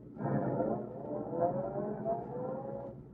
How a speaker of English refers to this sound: Lowry's starting across the street. Yes, roadster pulling out.